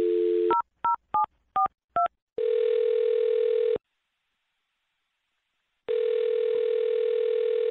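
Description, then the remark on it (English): A brief dial tone gives way to five quick touch-tone beeps as a phone number is dialed, followed by two long, steady ringing tones separated by a silent pause. The phone line sounds clear, with no talking. “All right, well, I'm going to dial her phone number right now and see why she's not calling you back, okay?”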